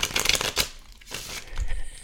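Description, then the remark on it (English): A deck of tarot cards being shuffled twice, a burst of crisp riffling and papery rustles followed by softer shuffling and crinkling, with no voices. “Maybe because I shuffled twice, not three times.”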